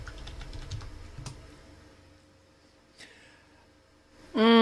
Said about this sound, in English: hold on. I'm typing this over in the host chat really quickly so that they know who I'm talking about.